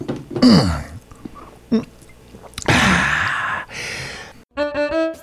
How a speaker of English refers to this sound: Now, the researchers theorized that the sight, smell, or taste of coffee may help people feel alert, regardless of the caffeine content. That calls for a sip.